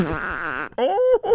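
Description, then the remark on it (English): A buzzy, wavering fart sound rumbles for about half a second, then gives way to two short, higher-pitched tonal squeaks. It is fairly loud, and no one speaks. “And I release toots in my sleep.”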